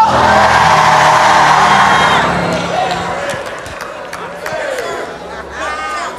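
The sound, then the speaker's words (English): A large crowd screams the phrase "oh well" together loudly for about two seconds, then the roar drops away into scattered sneaker squeaks, thumps and background chatter. “Could y'all scream that real loud?”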